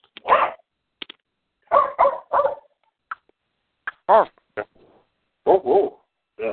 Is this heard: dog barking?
yes